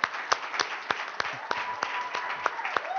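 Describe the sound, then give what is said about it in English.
A crowd applauds steadily, with sharp individual claps standing out from the dense patter. A sustained high whistle-like cheer rises partway through and holds to the end. “All righty, we've got a cheer section over here.”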